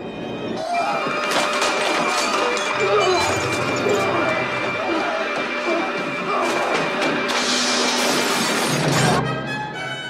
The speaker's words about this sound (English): And the glass that he was breaking, the mirrors, was real glass.